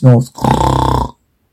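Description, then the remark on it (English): A person imitates a snore with their voice, standing in for a sleeping footman in a story: a short, loud grunting intake followed by a longer, rattling, buzzy exhale with a steady fluttering rhythm, then silence. “Footman snore.”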